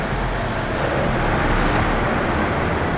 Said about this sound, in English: There's now a convoy of trucks coming by.